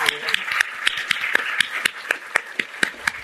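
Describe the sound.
Steady, evenly spaced claps ring out about four per second over a low murmur of voices, a modest round of audience applause honoring a woman in her 17th year in the fight, keeping a moderate, even volume throughout.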